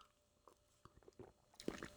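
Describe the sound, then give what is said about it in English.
Quiet wet squishing and small liquid clicks as a person takes a sip of water, a few soft swallowing gulps spaced over two seconds, with no talking. “Excuse me, I took a drink of water.”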